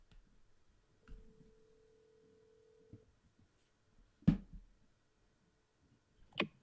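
A phone gives a single steady electronic tone lasting about two seconds, followed by a couple of sharp handling clicks and taps as it is set to do not disturb, with no one talking.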